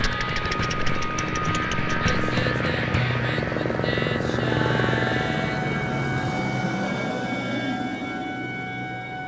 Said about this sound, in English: But you also hear the sound of a helicopter.